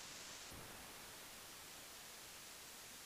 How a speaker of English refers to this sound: There's nothing coming out of your mic, dude. It's static. It's static. Nothing but static.